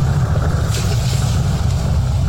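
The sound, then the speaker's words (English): A steady, loud low-end rumble of a car engine running at a dispensary drive-thru on a rainy day, with a constant hum and faint road or rain hiss on top and no voices. “I don't have to get out of the damn car.”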